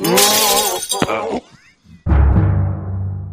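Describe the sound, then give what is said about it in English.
Glass shatters loudly in two bursts as a man breaks everything in the room: a bright crash with tinkling fragments, a brief lull, then a second heavy smash and crunch of breaking glass that rings on. “Sir, you just broke everything in here.”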